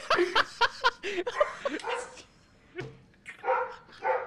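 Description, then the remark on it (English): A dog barks in a quick, excited flurry of sharp yips and woofs, then pauses before a few more bursts of higher-pitched, whiny barking. “The dog's not okay with it.”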